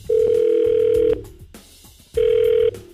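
Ringback tone of an outgoing phone call: a steady, buzzy electronic tone sounds for about a second, pauses, then starts again, heard clearly through the line with no one talking.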